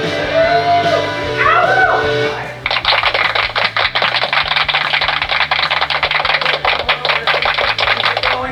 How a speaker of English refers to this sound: Actually, that was the only time that the extra long clap worked in our favor